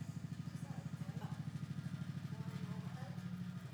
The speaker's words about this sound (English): It sounds like a Cobra helicopter. Incoming.